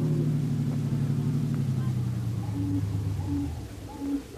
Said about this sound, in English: Don't drive so fast, Brother Harry. We don't want to attract the police.